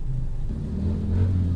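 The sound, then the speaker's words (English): A car engine rumbles steadily in city traffic in Manila, Philippines, its low drone rising slightly as it revs, with a dull wash of surrounding traffic noise and no voices. “Like I mentioned earlier, yes, I'm still in the Philippines and spending a lot of time in traffic, which is all part of what you do here in Manila.”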